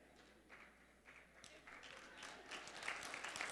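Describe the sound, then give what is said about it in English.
Scattered audience clapping that starts sparse and builds steadily into a fuller round of applause, rising in loudness toward the end, with faint murmuring voices underneath. “Did you just clap that you're the gift part, that they're not the gift?”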